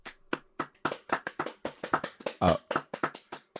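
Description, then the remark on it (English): A steady run of sharp hand claps, roughly a dozen in quick irregular succession, sounding alone without any talking over them. “I'm supposed to clap too.”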